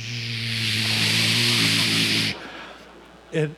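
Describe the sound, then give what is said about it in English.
A voice imitates the white noise of a sound machine being turned back on from a phone, a steady, loud, hissy shushing carrying a low hum for about two seconds, then cuts off abruptly, followed by a brief vocal sound. “let's turn the sound machine off because something happened. Let's turn it back on.”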